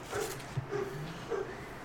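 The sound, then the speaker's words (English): A dog barks three times, short faint yips spaced about half a second apart over a quiet, slightly noisy background. “I swear to God, that dog.”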